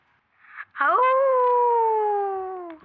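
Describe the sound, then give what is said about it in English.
A child's voice lets out one long, sustained howl in imitation of a wolf, rising quickly then holding and slowly sliding down in pitch over about two seconds, fairly loud. “I'm gonna make the sound of a wolf.”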